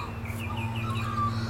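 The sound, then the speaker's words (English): Several short bird chirps and whistles sound outdoors, overlapping loosely against a steady low hum of background noise. “Listen to those birds.”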